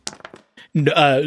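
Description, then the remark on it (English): A quick series of hard, clattering clicks as two dice are rolled for a game check and tumble and settle on a surface, landing on double ones, followed by a person's voice starting up. “So that's going to be two dice.”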